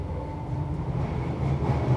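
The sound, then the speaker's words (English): A steady low rumble of a London Underground (tube) train running through a tunnel, with a constant droning hum and rolling rail noise that holds fairly loud throughout, no voices present. “Together, they take the London subway, or the tube, as Brits call it, and head to the theater.”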